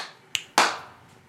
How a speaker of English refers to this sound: All right, clap sync. All right. 3, 2, 1.